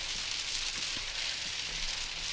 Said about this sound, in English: All right, we've taken a short burst through the hail, believe it or not, this is a lot quieter than it used to be, and we will continue as I go hydroplaning off at 45 degrees towards the shoulder.